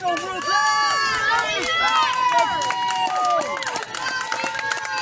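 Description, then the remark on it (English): A baseball crowd cheering excitedly at a pitch on a full count of three balls and two strikes, a dense, loud roar of many overlapping voices with rising and falling shouts that hold steady for several seconds. “And the crowd is really getting excited about this pitch.”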